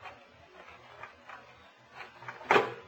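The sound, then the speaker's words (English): A lock is worked with a series of soft metallic scrapes and clicks, ending in a louder clunk as a door comes open. “Now, both of you boys keep quiet when I work on this door.”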